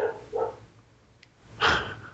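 A dog barks three times at uneven intervals, two quick barks close together and then a louder, fuller one after a pause, with no talking.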